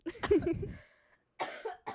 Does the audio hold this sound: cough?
yes